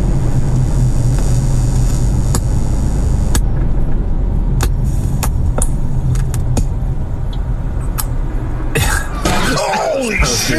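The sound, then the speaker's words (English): A car engine, recorded from inside the car, rumbles steadily and loudly from start to finish, with scattered sharp clicks and knocks, and a burst of clattering noise near the end. “Watch the car.”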